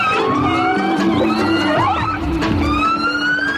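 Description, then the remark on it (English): Several killer whales of one pod, or family group, calling at once: overlapping, harmonic squeals and whistles that bend up and down in pitch, loud and continuous throughout, with no talking. “He tells us that killer whales travel in family groups, or pods, and that each group has its own distinct set of calls, such as the ones we're listening to right now.”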